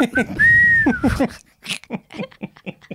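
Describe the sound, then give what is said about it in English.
A person whistles one short, clear note that rises slightly then dips, lasting under a second, surrounded by chatter and speech before and after. “Would I be hurt if I was whistling?”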